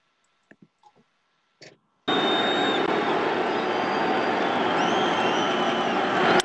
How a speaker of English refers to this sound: Struck him out, two down. So Wade Miley strikes out Machado and the crowd erupts.